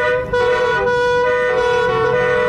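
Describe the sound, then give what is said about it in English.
Several car horns blare at once in a loud, sustained, overlapping chorus of honking in a traffic jam in Barnsley, with no talking. “And into the biggest traffic jam in Barnsley's history.”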